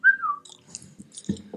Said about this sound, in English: just whistles at people.